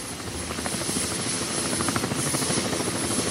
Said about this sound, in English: So for the next 3 hours, we had the constant noise of helicopters over us. And that is one lasting memory. Whenever I hear a helicopter close by, I get shudders, because that was the defining sound.